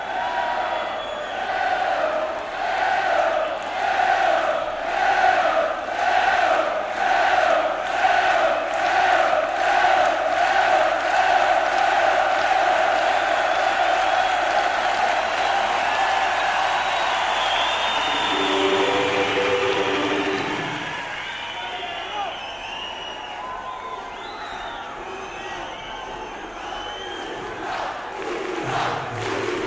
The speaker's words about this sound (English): Big loud Portugal chants come after that.